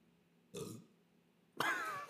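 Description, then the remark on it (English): Two burps with a pause between: a short, softer one first, then a longer, louder belch with a wavering, croaky tone. No talking. “I burp when I get scared.”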